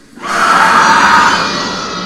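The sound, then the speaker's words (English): A woman in a film lets out one long, piercing scream that bursts in after a brief quiet moment and holds at full volume for about two seconds, shrill and unbroken, with no talking. “Yeah, I don't know why she screams like a banshee.”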